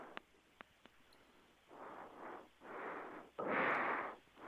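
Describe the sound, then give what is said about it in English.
A few sharp clicks, then rhythmic heavy breathing through the nose, three noisy airy bursts growing louder, the last a forceful snorting exhale through mucus, with no talking. “It just means that you might have a breathing problem. Maybe you've got a lot of mucus in your nose, and you just need to get the boogers out.”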